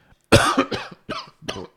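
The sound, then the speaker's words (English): A fit of coughing after inhaling a little spit: one loud, harsh cough followed by three shorter, rougher hacks in quick succession, like someone choking a little, with no talking. “Inhaled a little spit.”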